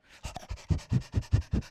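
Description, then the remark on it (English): A person imitates a little dog panting: a quick, steady run of about eight breathy huffs, moderately loud, with no other talking. “But he is panting so hard because he is so thirsty and he so needs refreshment.”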